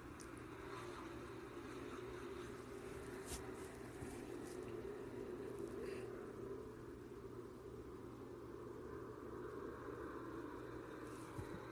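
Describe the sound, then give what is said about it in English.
A dense, continuous roar of many Cup Series stock car engines racing on dirt at Bristol as the race starts under the green flag, loud and steady with a deep rumbling drone and no break, with no one speaking. “Pace truck is off and they face the green flag. The Bristol Dirt Race is underway.”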